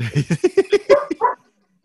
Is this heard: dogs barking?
yes